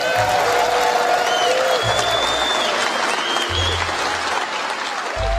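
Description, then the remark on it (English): Sustained applause from a large audience at an NRA meeting as executives, including Wayne LaPierre, enter the stage and take their seats. It is a dense steady wash of clapping at full volume throughout, with scattered voices and a few faint whoops mixed in. “As the applause dies down, the audience can clearly see that resting on the table is a name tag for Oliver North.”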